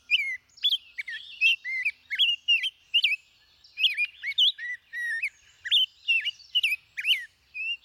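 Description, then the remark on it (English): A Nashville warbler sings a fast, continuous string of high, bright chirps and slurred whistles, clear, with no voices or other sounds around it. “Nearly all of North America's smaller birds, from this warbler to chickadees to thrushes, raise their young on insects, especially insect larvae, like this juicy caterpillar.”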